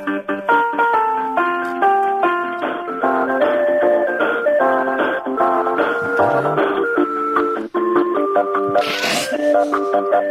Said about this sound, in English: He's playing Happy Birthday for Yusuf. I assume it's for Yusuf.